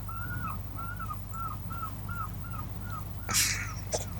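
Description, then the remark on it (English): A seagull calls in a steady series of about eight short, repeated cries, fairly faint over a low background hum, followed by a brief louder rustle near the end, in Brighton. “I can hear the seagull.”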